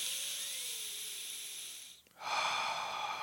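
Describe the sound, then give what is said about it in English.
Airy breathing in through the nose: a long steady draw of air, a brief pause, then a second louder and rougher breath. No one speaks. “The solution is to breathe in through your nose.”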